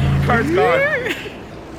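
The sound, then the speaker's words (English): A voice imitates car tires peeling out: a rising, whining screech that swoops up and then drops away over a low rumbling hum, fairly loud, lasting under two seconds. “You hear the car peeling out.”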